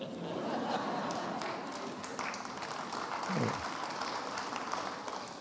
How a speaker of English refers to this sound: They're clapping for themselves.